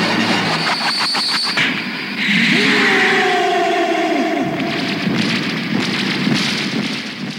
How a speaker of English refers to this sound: No, and things like Tekkaman, when he's fighting, you get this kind of, all he kind of gets is this kind of echoey ooh sound, which I'll put a sound clip in now just so you can get an example of it.